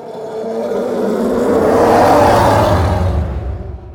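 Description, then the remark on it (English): Layered elephant growl and roar blended into one loud, sustained roaring sound with a deep rumbling bass underneath, forming the bass loop of the Star Wars TIE Fighter sound, swelling in the middle and tapering off toward the end, with no talking. “So those two elements layered together are what creates the bass loop for the TIE Fighter.”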